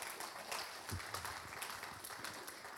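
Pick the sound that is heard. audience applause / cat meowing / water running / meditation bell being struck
audience applause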